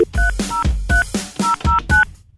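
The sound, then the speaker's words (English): A quick run of telephone keypad tones as a phone is dialed to call a 12-year-old, about eight short beeps in an uneven rhythm, each pairing two steady pitches, clear with no one speaking. “Wanted to, let me pick up the phone.”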